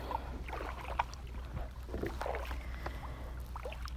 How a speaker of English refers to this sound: And now what you're hearing is me picking up my paddles and turning my kayak and just going for a little bit of a boat.